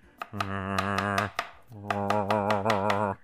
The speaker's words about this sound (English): So I get my apples and I dice them here, just in front of you right now.